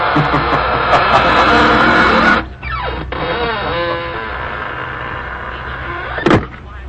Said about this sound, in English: We'll be trying your creaking door again soon for some more laughs.